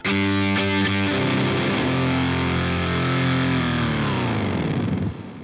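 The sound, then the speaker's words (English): A heavily distorted electric guitar, played through a Helix amp-modeling processor emulating an Orange amplifier, plays a sustained chord that bends and dives downward in pitch using an expression pedal, loud, ending with a brief fade after about five seconds. “So that's all done with amp modeling rather than distortion.”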